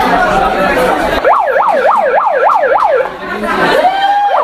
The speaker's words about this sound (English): I didn't know it had a siren.